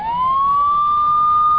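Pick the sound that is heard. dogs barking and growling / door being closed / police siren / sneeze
police siren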